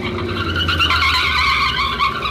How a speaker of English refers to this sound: November 1939. It is late at night. Two cars are speeding along a road. Suddenly, the second swerves ahead and forces the first car into the curb.